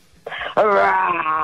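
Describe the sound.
A game contestant imitates a lion's roar with their voice as a buzzer: a short gruff onset, then a loud, sustained, harmonic wail-like growl lasting about a second.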